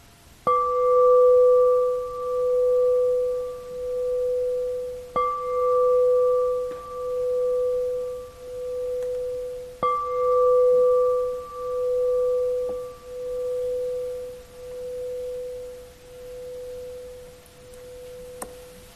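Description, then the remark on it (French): A meditation bell is struck three times, about five seconds apart, each strike leaving a steady, mellow tone that hums and pulses as it slowly fades. No one speaks. “si vous voulez, en entendant la cloche, notez quelles intentions vont apparaître, surgir, naître.”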